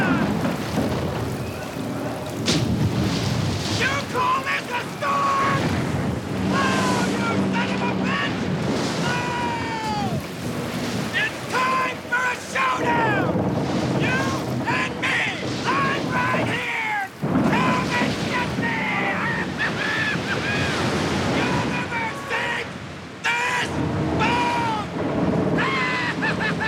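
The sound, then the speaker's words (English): A roaring hurricane at sea around a shrimp boat, with crashing waves, rushing wind and steady rain filling the whole recording. A man's voice, Lieutenant Dan, yells to God from the boat's mast over the constant, loud din. “Lieutenant Dan yelling to God on the mast of the shrimp boat during the hurricane.”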